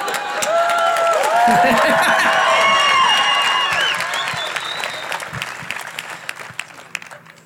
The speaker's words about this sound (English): So it would make me super fucking happy if everybody clapped it up for each other. Let's do that again, because that was some tennis shit.